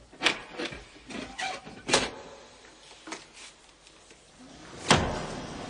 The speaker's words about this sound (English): This trapdoor leads down directly to the Devil's Kettle. Mm. Now, just draw back the bolts and open it, and you'll be able to see.